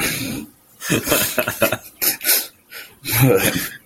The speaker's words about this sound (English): No. There was a snort. Nailed it. And a cough. Yeah, there was a cough and a snort.